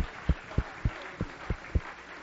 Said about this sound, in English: Let's give the Lord a big hand clap, because He is in our midst today. Praise God, praise God, praise God.